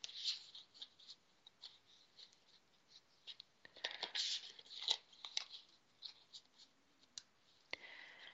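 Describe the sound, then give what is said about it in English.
A deck of cards being shuffled for a Taurus card reading, a quiet run of crisp riffling and flicking with soft clicks and bursts of papery patter, louder in the middle, no voices. “Little shuffle here.”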